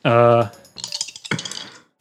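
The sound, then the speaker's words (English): A short sustained vocal tone, then a quick burst of hard clicking and clattering as small six-sided dice tumble and rattle across a hard tabletop, fairly loud, settling within a second. “If I roll a 20, that I only got 6-sided dice.”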